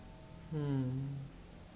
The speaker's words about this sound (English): You see, but the roosters are really happy though. They're allowed to make all the noises they want at any hours of the night.